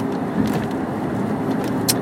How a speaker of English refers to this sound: Just getting up to the hills now. Gonna be, if you're hearing like some road noise, I'm sure it's a little noisier now that I'm back in my car, the Cadillac.